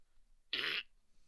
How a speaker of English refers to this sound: Did the microphone pick up the fart sound?